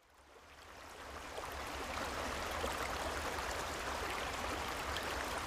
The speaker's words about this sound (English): Now, as the gentle breeze rustles the leaves and the creek sings its lullaby, get comfortable, close your eyes, and let the soothing sounds of the creek carry you into a realm of wonder and relaxation.